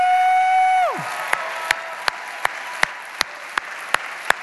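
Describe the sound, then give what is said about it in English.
A church audience, celebrating active-duty and retired military members standing, bursts into sustained, dense applause right after a loud, falling whistle-like tone, with sharp rhythmic claps or beats punching through the crowd noise at a steady pace. “And so if you serve in an active duty or retired military in any capacity, would you take a minute, just stand to your feet for us so we can celebrate you? No lame claps here at all the campuses.”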